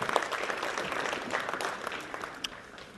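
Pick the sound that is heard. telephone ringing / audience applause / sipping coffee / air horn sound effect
audience applause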